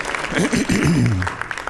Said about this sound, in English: Let's give our young people a round of applause. We appreciate them. They're on their way.